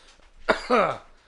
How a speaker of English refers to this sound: And I still have a bit of a cough.